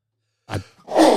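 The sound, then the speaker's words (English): A single sneeze with no talk: a short, breathy catch of breath, a brief pause, then a loud, harsh explosive burst that ends abruptly. “Bless you.”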